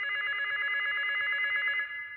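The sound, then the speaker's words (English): A hotel telephone at a Holiday Inn rings in one steady, continuous burst lasting nearly two seconds before cutting off, fairly loud, with no voices present. “The phone was ringing.”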